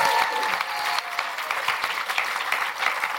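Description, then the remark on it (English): A steady burst of audience applause welcoming guest Simon Garfield. Dense overlapping claps form a bright, even wash that holds at a fairly constant loudness throughout, with no talking over it. “Simon Garfield, round of applause for Simon, please.”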